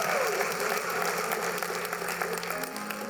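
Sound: church audience applauding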